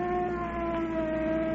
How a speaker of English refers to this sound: Look at that car coming up here. Looks like a cop in it.